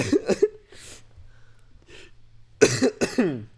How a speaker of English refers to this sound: Yeah, I also have this cough,